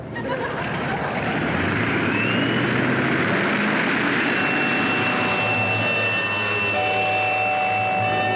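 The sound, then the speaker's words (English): A steady, loud drone of aeroplane engines in flight, a dense continuous roar with sustained whining tones rising over it toward the end, and no voices. “By dawn, the mighty aerial fleet were approaching Ceylon.”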